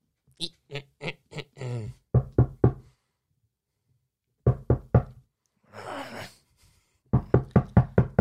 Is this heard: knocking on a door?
yes